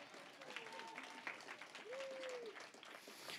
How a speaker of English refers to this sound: If you knew him, you would clap more.